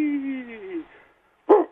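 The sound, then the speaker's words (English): A dog gives a drawn-out, falling whine, then after a brief pause lets out a single short, sharp bark, fairly loud. “That's one stubborn dog.”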